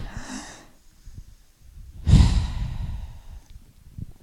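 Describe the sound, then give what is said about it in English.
Heavy breathing right up against the microphone: a short breathy exhale, a pause, then a longer, louder rush of breath that slowly fades, with no talking. “So he's just breathing now.”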